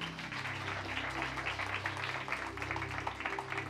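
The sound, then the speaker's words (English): A steady wash of crowd applause at a church gathering, many hands clapping at once in a dense, continuous patter that holds at an even level throughout, with a low sustained hum underneath. “Round of applause.”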